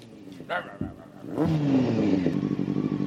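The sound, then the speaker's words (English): A motorcycle engine revs up loudly, its pitch climbing and holding in a sustained roar after a brief voice-like sound at the start. “You got a motorcycle? Sure do.”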